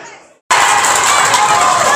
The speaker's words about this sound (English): You might be able to hear the cheer. Ruben Reid's just gone down the left-hand side and cut into the box, and he was brought down for a penalty.